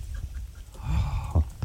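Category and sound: bird, duck calling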